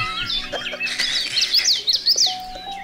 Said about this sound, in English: There's so many birds. There's so many birds.